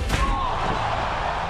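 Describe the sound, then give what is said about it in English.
A single loud, sharp slam of a chair striking wrestler Ronda Rousey rings out right at the start, followed by a steady wash of arena crowd noise at a SmackDown versus Raw wrestling event. “A chair attacking Ronda Rousey!”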